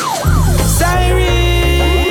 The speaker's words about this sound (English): Siren, you hear it? The cops is coming to get you.